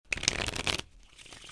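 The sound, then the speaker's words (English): A deck of playing cards is riffled in one quick, crisp burst lasting under a second, followed by faint, soft handling noises as the cards settle. “Pick a card. All right. I'm going to choose this one.”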